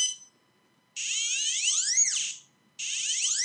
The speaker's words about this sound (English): Can I demonstrate? Yeah, please. I've got one just here. So this pinpointer is set to pitch mode. It's got the conventional bleep mode, what the Garrett's got, but this pitch mode really is nice. Let's go. Switch it on.